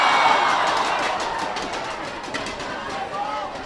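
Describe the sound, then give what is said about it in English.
A dense, steady roar of crowd noise at an AFL match, with many high children's voices shouting and cheering and kids banging inflatable clappers together, over a broad wash of chatter, loud throughout. “I will say that the crowd sounds a lot bigger than it actually is. We're just in an area with a lot of kids, so...”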